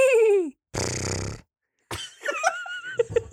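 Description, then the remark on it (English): A person imitates a horse neighing: a quick falling whinny, then a breathy snort-like rush, then a wavering, throaty neigh with bursts. The imitation is fairly loud, with no talking. “Some places just the horse neighing.”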